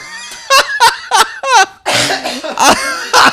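A close, stifled cough breaks out in a rapid series of sputtering bursts, some with a laugh-like, voiced quality, ending in a rougher burst of coughing. No one speaks.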